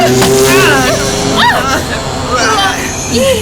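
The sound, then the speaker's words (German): A motorcycle engine roars loudly, its pitch rising and falling as it revs past a car, over a dense, busy background of road noise and muffled voices. “Achtung, das Motorrad!”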